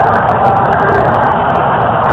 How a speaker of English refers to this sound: The crowd going wild here at the Coliseum.